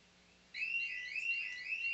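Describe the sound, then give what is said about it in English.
An alarm clock starts ringing abruptly after a moment of quiet, a loud, shrill, steady electronic tone with a rapid repeating warble, continuous to the end. “Damn, that shit is loud. Definitely a good alarm clock.”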